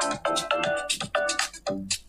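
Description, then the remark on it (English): A phone ringtone for an incoming call plays a quick, bright electronic melody of short repeated notes in a bouncy rhythm, with no one speaking. “I don't put my house phone number, one because hello, I've got a phone call already.”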